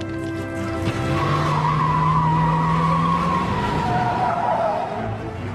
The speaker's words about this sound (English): He puts Edward in the car and they start ripping through Sunday traffic.